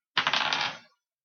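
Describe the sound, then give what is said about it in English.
A handful of dice clatter and tumble across a hard tabletop in a brief rattle of overlapping clicks that settles within a second, with no voices. “God, so many dice.”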